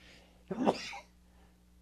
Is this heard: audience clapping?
no